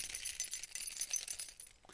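The keys to a Volvo car are jangled like a gavel in a quick, bright metallic shake, fairly loud, with dense chiming clinks rattling together for about two seconds before thinning out. No voices.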